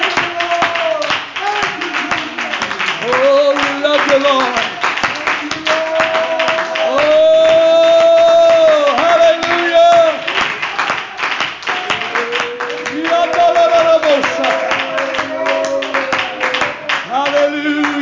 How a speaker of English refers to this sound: Why don't we clap our hands one more time for the Lord?